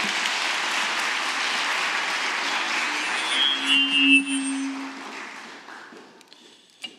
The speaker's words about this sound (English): Let's give a round of applause for Jeff.